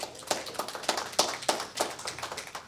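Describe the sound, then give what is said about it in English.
A crowd claps together in a steady, even rhythm, with sharp claps landing about three times a second over a bed of scattered applause, moderately loud, with no talking. “This is something to applaud God for.”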